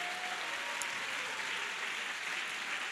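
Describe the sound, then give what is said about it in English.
An audience claps their hands to thank God, a dense, steady wash of applause that holds at an even level throughout, with no voices over it. “if you're rapture ready, I wish you'd clap your hands and just thank God that truth has been revealed to you.”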